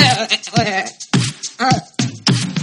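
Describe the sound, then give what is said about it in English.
A human voice imitates a goat bleat several times in a row: short, wavering, nasal cries, loud, each quickly following the last. “It's hard to breathe with a cock in your throat, so I accidentally make a noise that sounds like a goat.”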